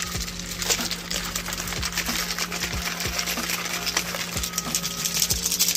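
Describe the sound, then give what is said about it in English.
A drink mixer bottle holding Dragonade energy drink powder and water is shaken hard and steadily, its loose contents rattling and clattering in a fast, continuous rhythm, with no talking. “We got a little mixer here, getting ready to roll.”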